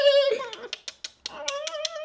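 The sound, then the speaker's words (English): A voice imitates a dolphin call: a high, squeaky whine, then a quick series of sharp clicks, then the whine returns with more clicks over it. Fairly loud and alone. “A good dolphin's like... But it's also like a little clicky, like they do like a...”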